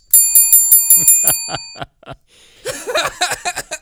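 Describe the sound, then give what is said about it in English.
A bell rings in a quick, even series of about ten loud strikes, its tone lingering, then stops; after a short pause, a brief burst of scattered clattering noise follows. “Ladies and gentlemen, that was the bell ringer.”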